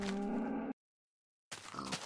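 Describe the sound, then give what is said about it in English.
A cow moos in a loud, low, droning call that cuts off abruptly. After a brief silence, a second rougher, breathier burst follows. No one speaks. “Oh, that's a cow!”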